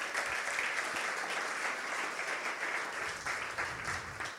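A crowd claps steadily for several seconds, a dense, even wash of many hands applauding indoors at moderate loudness with no voices standing out.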